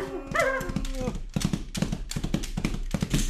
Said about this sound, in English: Galloping down the path that wound out of the surrounding mountains came a giant horse. Huge tufts of hair nearly covered its hooves, and its neck was as thick as an oak.